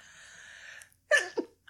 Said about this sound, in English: Bless you.